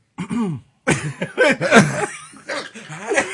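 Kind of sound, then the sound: human body sound, man clearing his throat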